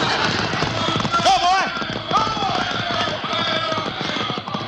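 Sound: horses galloping away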